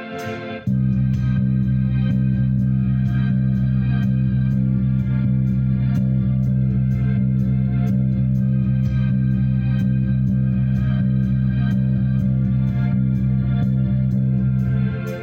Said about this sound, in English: We're going to use a delay echo, if you will, and it's going to move things along.